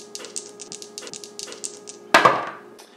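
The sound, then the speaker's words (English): Dice for a board game rattle in a rapid string of light, bright clicks as they are shaken, then land with a single sharp, loud clatter that quickly fades. No one speaks. “Okay, birthday girl, it's your turn. Roll the dice.”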